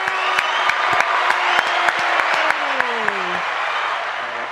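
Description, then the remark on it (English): An applause sound effect played to introduce a show guest: a crowd applauding loudly and steadily, with sharp individual claps, cheering and a couple of sliding whistles over the din, tapering off slightly at the very end. “If I ever start a podcast or a show of any kind, I am stealing your applause line.”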